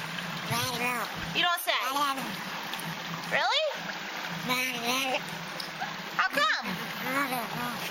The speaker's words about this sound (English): Mitch, this sea otter talks.